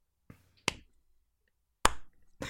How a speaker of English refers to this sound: That's me. Sorry, that wasn't supposed to come off as like a sarcastic clap. Didn't know how to clap in front of a mic.